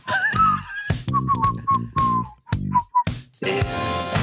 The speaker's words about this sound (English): Who was whistling there? Sorry, that was me. Were you both whistling? What? I think you were both whistling.